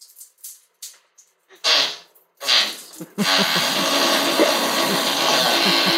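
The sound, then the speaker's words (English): In a played video, a few short puffs and two breathy bursts give way to a long, loud, raspy fart that blasts steadily for about three seconds, coarse and noisy with a sputtering low rumble underneath. “Yeah, I was thinking it was going to be a water spray because that was a powerful fart.”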